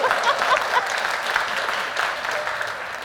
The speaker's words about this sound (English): Did they just clap for you? Someone did, but I don't know who it was.